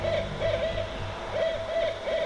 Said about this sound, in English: What would the Radio Owl's Nest shows be without the sound of owls?